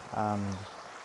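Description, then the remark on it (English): A steady, even rush of flowing river water in a nature reserve fills the background, while a short voiced sound, like a person's vocalization, rises briefly over it near the start. “I'm in the nature reserve today, as you can hear by the river noises, river sounds, river.”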